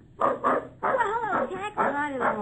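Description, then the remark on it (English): A little old dog named Moreover whimpers and yips excitedly in a quick series of high, wavering cries, fairly loud, with barely a pause between the bursts. “Hey, my little old dog.”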